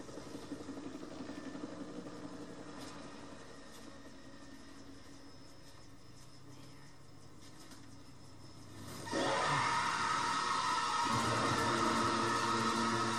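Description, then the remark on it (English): A helicopter engine left running idles in a steady mechanical drone throughout with no voices, then grows noticeably louder and fuller about two-thirds of the way in. “How come he left a chopper running?”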